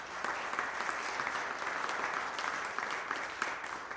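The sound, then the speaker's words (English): A crowd applauds steadily, a dense, even patter of many hands clapping that holds at a moderate level for the whole stretch without anyone speaking over it. “Today, she's 614 days sober. You can clap for that.”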